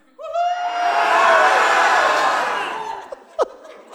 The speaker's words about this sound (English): And the moment you hear it, I want everybody to shout, ah! Do that. Ah! That's awesome, man. Now do it like you really mean it.